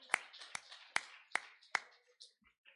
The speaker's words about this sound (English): Give him another hand clap of praise.